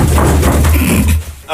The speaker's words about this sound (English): Okay, so by the way, that giant thud, sorry, the giant rolling thud was Maury's chest hitting the floor.